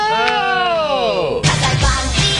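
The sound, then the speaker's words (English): A drawn-out, wavering vocal build-up breaks into a loud, hissing burst, a sneeze whose noisy release trails off into breathy rustle. “Oh! Bless you.”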